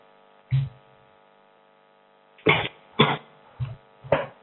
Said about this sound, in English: Sorry, I'm coughing on marijuana. Just don't mind me.